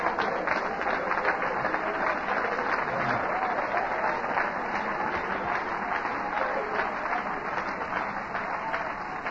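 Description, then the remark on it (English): An audience claps hands to God during preaching, a dense steady wash of many hands applauding together at a fairly loud, even level for the whole stretch, with a faint murmur of voices beneath. “Oh, clap your hands to Him.”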